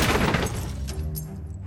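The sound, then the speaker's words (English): A television, swiped from its stand, crashes face forward onto a heap below with a loud smash, followed by a rattling scatter of debris and clattering pieces settling over the next second. “It crashed face forward onto the heap below, where it remained for years to come.”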